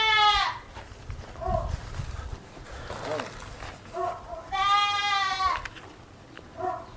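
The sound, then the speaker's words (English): A goat bleats loudly, two long wavering cries with a few shorter bleats between and after them, over a low outdoor rumble. “They have a goat back there.”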